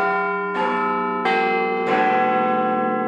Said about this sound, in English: For example, the famous Big Ben clock at the Houses of Parliament in London plays a pre-programmed sequence of notes every quarter hour, known as the Westminster Chimes.